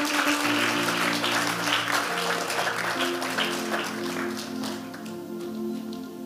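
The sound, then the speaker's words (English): An audience claps together during a sermon in a sustained burst of applause, dense and fairly loud, over steady sustained organ or keyboard chords that continue underneath. “Give the Lord a clap of it.”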